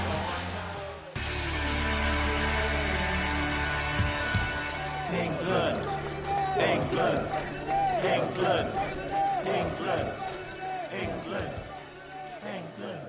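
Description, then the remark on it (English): A football stadium crowd cheering after England score to go 2-0 at Euro 2016: a loud, sustained roar that bursts in after a brief quieter opening, with many excited voices shouting and rising over the din throughout. “From one end of the field to the other, the crowd are in raptures.”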